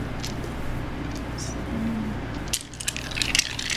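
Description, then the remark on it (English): A handful of dice being rolled clatters and rattles onto a hard surface in quick, uneven bursts, over a low steady background hum. “That's a lot of dice.”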